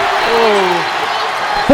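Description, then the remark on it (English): A loud, steady roar of a basketball crowd cheering a made three-point shot fills the whole stretch, with a few raised voices and shouts rising and falling above the wash of noise. “And the crowd loved that one.”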